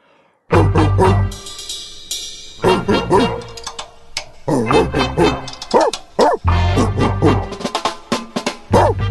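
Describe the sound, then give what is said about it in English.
A dog barks loudly in a rapid series of bow-wows and yips, coming in bursts with short pauses between them, with no one talking. “We'll get into that right after the... Here, bark it with me.”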